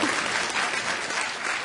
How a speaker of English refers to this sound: Yeah, round of applause.